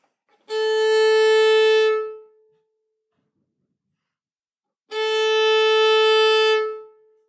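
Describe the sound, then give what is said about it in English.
Two separate bowed notes on a violin's open A string, played on old strings that need changing, each held steadily for about a second and a half, with bright buzzy overtones and a quick, short fade after each stroke. “It's not like terrible, the pitch isn't going, but if you can hear, the decay is really short, that echoey sound after the open A that I play. So here's a violin that needs the strings changed.”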